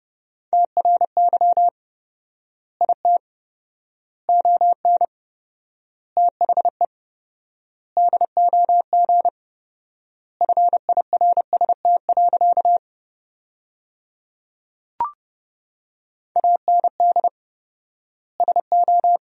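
Fast Morse code at 30 words per minute with fourfold word spacing, sending sentences built from the top 400 words, as a single steady mid-pitched beep keyed in quick bursts of dots and dashes with long silent gaps between words, plus one brief click partway through. No voices.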